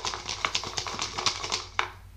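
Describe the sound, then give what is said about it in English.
Small cut-up paper slips with topics written on them are shuffled around in a bowl, a quick run of crisp rustles and light ticking clicks, steady and fairly soft, with one sharper tap near the end. “We cut them up into small pieces of paper, we flip them into a bowl, and then shuffle them around.”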